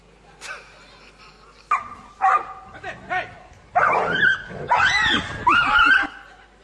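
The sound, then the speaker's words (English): In a video, a dog barks and yips at a tiger in a quick series of sharp, high-pitched bursts, growing louder and more frantic toward the end. “It's about a dog that has been listening to some motivational speakers and decided to take on a tiger.”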